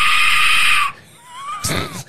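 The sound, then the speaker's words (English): An Aztec death whistle is blown: a loud, harsh shrieking blast, like a human scream, holds for under a second, then a thin wavering tone and a second shorter rasping shriek follow. “It's the Aztec death whistle.”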